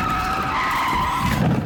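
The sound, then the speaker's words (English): A car skids with a loud, sustained tire screech lasting under two seconds, with a rough low rumble rising near the end as it hits a curb and flies across a traffic island. No one speaks. “We hit a curb, flew across the traffic island, and ended up on someone's nature strip.”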